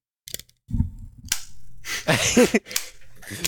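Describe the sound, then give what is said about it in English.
An AirPods earbud case clicking open and snapping shut several times in quick, uneven succession as the earbuds are popped in and out, fairly sharp, with a faint low murmur underneath. “You're just clicking them back.”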